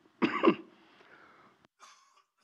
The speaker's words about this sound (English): Sorry, I'm going to cough.